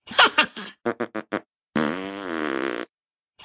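A sequence of farts: a few short sputtery bursts, then four quick rhythmic pops, followed by a long, drawn-out buzzing fart of about a second, loud and with no talking over it.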